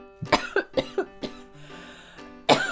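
A quick run of five or six close, sharp coughs, then a pause and one more loud cough near the end, with a faint steady tone humming underneath.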